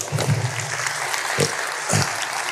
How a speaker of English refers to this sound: That's a great question. Let's clap for that.